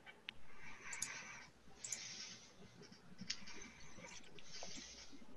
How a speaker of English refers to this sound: And then that's going to be, let me roll the damage dice.